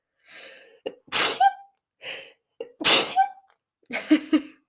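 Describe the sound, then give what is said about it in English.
Two loud sneezes in quick succession, each preceded by a sharp catching inhale, followed by a short breathy exhale at the end. No talking. “hang on, sneeze.”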